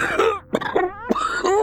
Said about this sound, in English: The man shook with a coughing fit. His eyes closed as he gasped for breath.